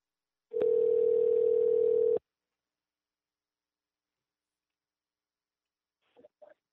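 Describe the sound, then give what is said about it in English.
A click, then a steady, loud telephone dial tone after the caller hung up holds one mid pitch for under two seconds before cutting off abruptly; after a silence, a few brief faint voice fragments follow. “They fucking like hung up.”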